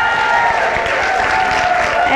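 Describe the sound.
A crowd at a women's tea gives a round of applause for Jesus, dense clapping filling the whole stretch at a loud, even level, with a sustained tone and murmuring voices mixed underneath.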